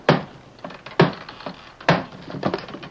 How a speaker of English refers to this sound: Shut the door a minute so there won't be so much noise outside the room. Go ahead, the door's closed. I'll use the butt of my gun.